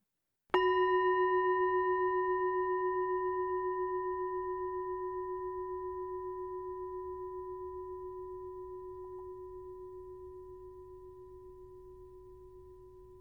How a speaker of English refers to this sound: And in a few moments, listening to and following the sound of the gong.